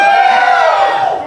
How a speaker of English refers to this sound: So now, which door do they choose, folks? Door one, door two, or door three? Let me hear cheers for number one.